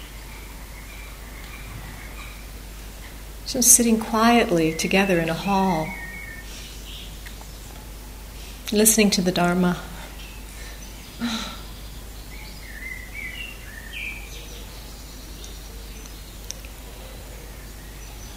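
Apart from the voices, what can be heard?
bird singing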